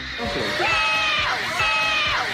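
An aggressive fan shouts loudly, two long, strained yells with rising and falling pitch, raw and forceful against a faint crowd-like murmur.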